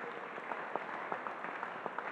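A crowd claps steadily, a dense patter of many hands with sharper individual claps popping out now and then, at a moderate, even level with no one speaking.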